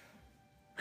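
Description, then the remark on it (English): Near-silence breaks into a sudden, loud burst of breath right at the end, a single sneeze erupting sharply and cut off as it peaks. “Bless you.”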